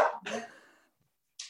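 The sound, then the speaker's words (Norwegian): A dog barks twice in quick succession, the second bark fuller and trailing off, followed by a brief pause and one more short yap. Fairly quiet, with no talking. “Bare vent litt. Nå med hunden.”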